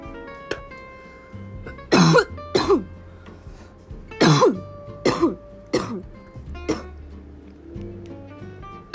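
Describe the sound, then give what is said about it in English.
A loud coughing fit: five or six harsh, hacking coughs in quick uneven bursts, with faint background music and no talking. “Still fucked my lungs though. As you know, cough up a lung”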